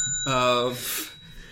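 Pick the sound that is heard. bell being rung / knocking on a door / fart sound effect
bell being rung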